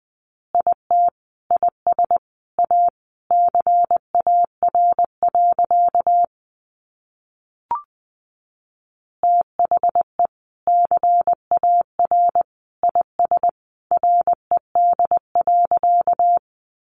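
Morse code sent at about 20 words per minute: a steady mid-pitched beep keyed into rapid short and long bursts, broken once by a pause and a soft click, with no voices.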